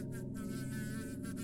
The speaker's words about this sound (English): Oh, wait. Oh, Jesus Christ, that's a bee! Bee!